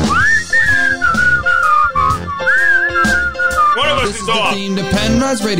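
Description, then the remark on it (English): A man whistles a wavering, sliding melody over loud, busy music with drums and instruments, the opening theme of the Penrod Radio Show, the whistle riding clearly on top and bending between notes. “We're almost to the part of where I start to whistle.”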